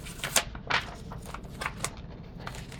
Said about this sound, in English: Still shuffling through papers.